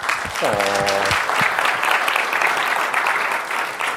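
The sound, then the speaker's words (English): A conference audience claps steadily in a dense, sustained round of applause welcoming a speaker to the stage, lasting the whole stretch, with a brief voiced sound from one person near the start rising above the clapping. “I thought the round of applause came after the presentation, but I'm okay with that.”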